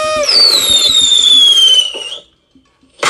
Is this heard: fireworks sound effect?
yes